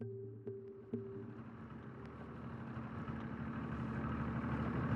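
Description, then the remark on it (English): A boat motor idles with a steady low rumble as the boat comes ashore at Felix Cove, its drone slowly growing slightly louder, with a few faint clicks near the start and no voices. “Well, we're in the boat and we're coming up ashore at Felix Cove.”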